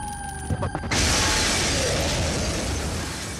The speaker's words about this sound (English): And just as he does hear that radio broadcast, the diner explodes.